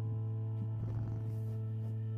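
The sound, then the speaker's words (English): A cat sitting on a person's lap purrs softly and steadily, a low continuous rumble with a faint fluttering texture over a steady hum and no voices. “Hopefully you can hear him purring.”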